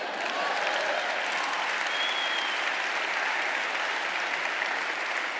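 An audience claps steadily for the full five seconds, a dense, even wash of many hands with no break or fade and no voices over it.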